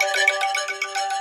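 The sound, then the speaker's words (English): A phone ringtone plays alone, a bright, steady electronic melody with layered tones holding at an even, moderate loudness throughout the short burst. “I don't recognize the number.”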